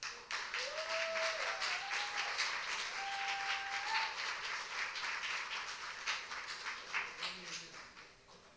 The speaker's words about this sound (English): A big round of applause